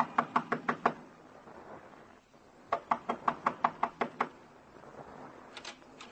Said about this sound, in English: Up a flight of stairs, down a hall whose walls are closer against you than they were the night before. Knock on the door.